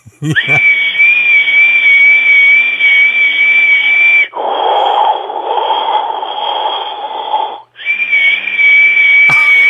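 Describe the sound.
A voice mimics a dentist's drill with a steady, piercing high-pitched whine, switching midway to a lower grinding buzz before returning to the shrill tone. Loud and continuous, with no talking.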